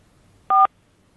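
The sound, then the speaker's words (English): A single short electronic beep, like a telephone keypad tone cutting into the line, loud and steady for a fraction of a second against near silence; a fault on the phone line during a call with the Minister for Justice, Helen McEntee. “That's a problem with the phone line there.”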